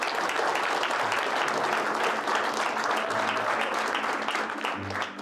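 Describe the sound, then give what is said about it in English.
An audience at an event with special guest Cub Swanson claps steadily for about five seconds, a dense, even wash of many hands at a fairly loud, constant level that tapers slightly at the end. “So today, let's clap it up.”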